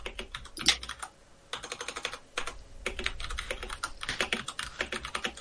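Rapid typing on a computer keyboard, entering a birthday search, with bursts of clicky keystrokes separated by a couple of short pauses, no voices.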